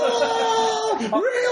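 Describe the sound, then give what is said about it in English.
Villains let out a loud, sustained voice cry with strained harmonics that holds steady, then swoops down in pitch and back up, like someone yelling or screaming. “Are they just going to scream everything that's happening?”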